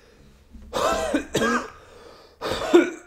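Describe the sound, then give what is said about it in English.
A harsh coughing fit: three rough, throaty bursts in quick succession, the last one after a short pause, with no talking in between. “I'm so fucking sorry for the coughing. I can't fucking help it today.”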